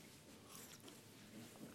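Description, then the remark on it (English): Faint crinkling and rustling of a cough drop wrapper being unwrapped by a speaker before a Bible reading, then a sip of water, with soft mouth noises and no talking. “Let me get this cough drop out.”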